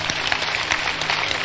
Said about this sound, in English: Clap for Jesus.